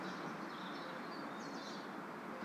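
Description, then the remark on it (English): Birds call faintly outdoors on a sunny summer day in Napa Valley, thin high chirps drifting over a steady soft hiss of light wind and ambient noise, with no voices. “Outside, the wind is blowing lightly, birds are calling,”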